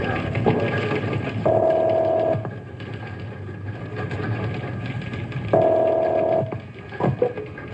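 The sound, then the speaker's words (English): A telephone call going through: two steady, buzzing ring tones about a second long, separated by a few seconds of faint line hiss, heard as if through the receiver. “I'd better call him on the phone.”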